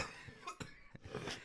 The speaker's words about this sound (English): Sorry, we are brought by fat guys coughing into a microphone still.